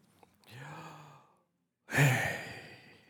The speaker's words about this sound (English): See, that's a breathing as opposed to a speaking, all right?